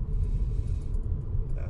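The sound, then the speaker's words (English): A steady, deep rumble fills the inside of a moving car in heavy traffic on German city roads, with road and engine noise droning continuously at a fairly loud, even level throughout. “I'm in heavy traffic, just like Scottlo was, but I think people are a bit more civilized on German city roads.”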